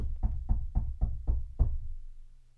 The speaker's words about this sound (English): Knocking on wood right there